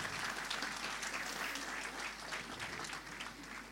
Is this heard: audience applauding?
yes